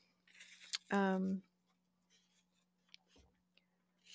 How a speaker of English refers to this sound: All right. I hope all of this page rustling feels more atmospheric than distracting. So this is coming from a book by Cheryl Strayed.